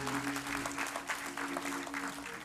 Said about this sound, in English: So come on, give that a big round of applause.